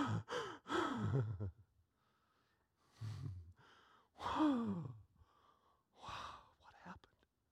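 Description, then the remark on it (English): Heavy, ragged panting of several men as a storm suddenly gives way to a glassy water surface: loud breathy gasps and huffs in uneven bursts with short pauses between, prominent, with voiced groans mixed into the exhalations. “And the only thing you can hear are the guys panting.”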